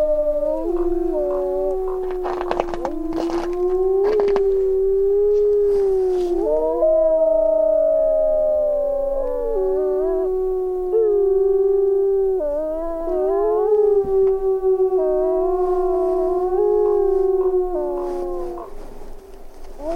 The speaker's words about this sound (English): Wolves are fully protected and very vocal in Yellowstone National Park.